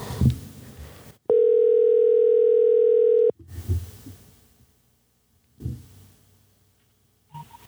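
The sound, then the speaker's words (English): A phone's ringing tone sounds once as a steady, fairly loud electronic tone lasting about two seconds, framed by brief bursts of muffled rustling noise and quiet gaps. “secret phone call.”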